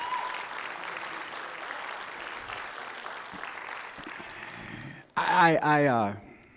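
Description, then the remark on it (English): An audience applauds its pastors with steady, dense clapping for about five seconds, then the applause cuts off abruptly and a voice speaks loudly. “But could we just say, we love you, pastors, and let's just give them one more great big applause.”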